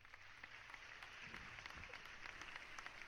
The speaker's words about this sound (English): Here we go. Let's go with a round of applause. Let's give it a round of applause as soon as it comes on.